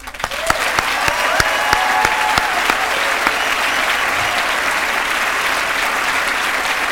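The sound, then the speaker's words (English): Sustained applause for students from a large audience fills the whole stretch, a dense steady wash of clapping with a few sharper claps and a brief whistle-like tone near the start. “So let's take this time to applaud these students right now for their aptitude, their tenacity, their determination, and their courage.”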